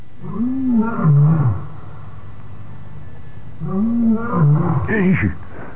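A lion at a water hole in Central Africa roars twice, each a loud, drawn-out groaning call that rises and falls, with a short silent gap between them over a steady background hiss.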